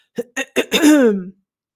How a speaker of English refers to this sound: Please clear your throat gently one more time for me, please.